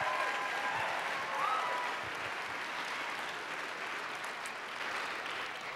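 A crowd claps steadily for several seconds, a dense, even wash of applause with no letup, with a faint whistle or cheer near the start.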